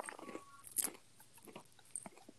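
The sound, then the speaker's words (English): Someone chews popcorn shrimp right against a microphone, with wet mouth sounds and a couple of sharper crunchy bites standing out. No one talks. “Wait, can you hear me chewing now?”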